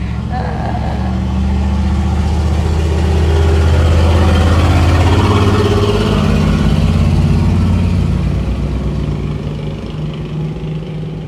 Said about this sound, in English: If it takes all that noise to get this truck across this country, is he going across the country in that thing? And that doesn't sound like anything that could make it more than a block or two, maybe